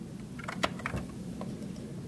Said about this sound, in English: Color Kinetics is a Boston-based company designing creative uses for LEDs. An engineer types a few clicks at a keyboard and lights up pinpoints of red, green, and blue LEDs contained in a dozen 4-foot-long plastic tubes.